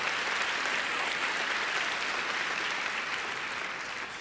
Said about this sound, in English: Let's encourage each other. All in favor, clap your hands. Come on, we need to encourage each other.